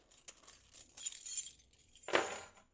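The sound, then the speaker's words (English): Metal keys are taken out of a pocket, jangling and clinking in a burst of bright, rattling chinks, followed by a louder rustling jingle near the end, with no talking. “All right, I'm going to cut this out because this is going to bother me, but I got to take my keys out of my pocket and it's going to sound like hell.”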